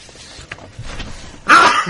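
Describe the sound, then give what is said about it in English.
A single sharp sneeze bursts out loudly in a studio, blamed on the air conditioning, after a stretch of quiet shuffling and faint background noise, breaking off with a short breathy tail. “God bless you, dear ….”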